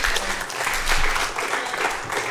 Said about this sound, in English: You clapped louder for his song than you just clapped for that. You did.